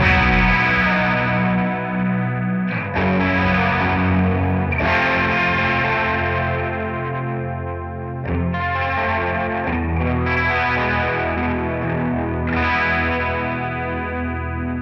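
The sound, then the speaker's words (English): An electric guitar plays sustained chords through a chorus effect feeding into heavy distortion, producing a dense, swirling, buzzy tone that stays loud and continuous with brief pauses between chord changes. “So you're getting much more of the chorusy and noise.”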